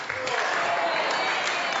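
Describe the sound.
An audience claps steadily to cheer on a volunteer who is about to pick up a weight and stand up with it. A dense continuous wash of many hands claps at even loudness, with crowd voices mixed into the applause throughout.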